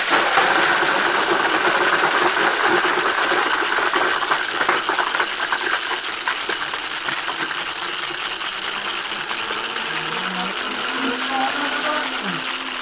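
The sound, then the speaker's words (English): A blender making a frozen cocktail runs continuously with a loud, steady, high-pitched motor whir and grinding hiss, easing slightly in level partway through but never stopping. “So I'm gonna turn on my blender.”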